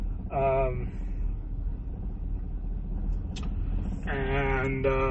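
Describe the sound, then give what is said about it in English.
A low, steady rumble of about 20 cars idling in a drive-thru line fills the whole stretch, constant, with a couple of short bursts of someone's voice rising over it. “Kid you not, there's like 20 cars.”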